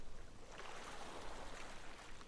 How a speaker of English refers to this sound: I sit calmly beside her and listen to the soft sound of the waves.